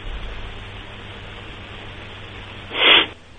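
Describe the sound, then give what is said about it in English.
A single short, loud, breathy sniff bursts out near the end, following about three seconds of steady low hiss with no talking. “All right, you got the sniffles, my friend.”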